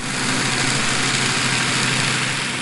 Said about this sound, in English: Oh, yeah, boat noise, a.k.a. human noise.